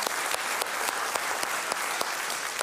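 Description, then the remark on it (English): An audience applauds steadily for John, a man graduating this year on his way to becoming an orthopedic surgeon: a dense wash of many hands clapping at an even level, with a few sharper individual claps popping out at a roughly regular beat. No one speaks. “Yeah, I love clapping for John.”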